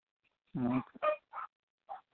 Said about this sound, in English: Is your dog barking? Yeah. Sorry.